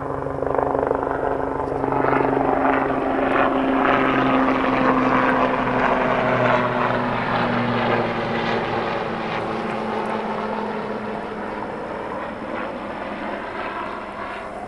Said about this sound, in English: Now there's a helicopter going overhead, so I'm going to wait just a minute.